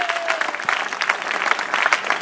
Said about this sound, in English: Please, with a round of applause, let's say thank you to them again.